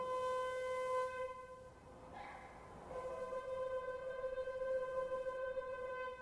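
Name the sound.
shofar being blown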